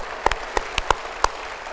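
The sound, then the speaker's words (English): A handful of scattered hand claps for the pastor, about half a dozen sharp slaps at uneven intervals over a soft background hiss, like a brief, thin round of applause with no talking. “And that's, I'm telling you guys, yes, give Pastor a round of applause.”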